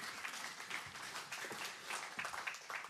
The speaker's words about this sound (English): Round of applause for my dad